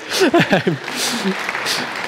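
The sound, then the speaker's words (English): An audience at an Easter celebration gathering bursts into steady applause, a dense patter of many hands clapping, with a few voices and chuckles at the start before the clapping carries on evenly. “you have to clap me.”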